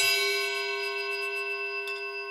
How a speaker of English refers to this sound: Allow the sound of the chime to call you to presence, right here, right now.